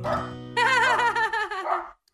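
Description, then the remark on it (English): A dog barks, a drawn-out, wavering bark-howl lasting about a second and a half, fairly loud, then fading to quiet. “Is that your dog barking?”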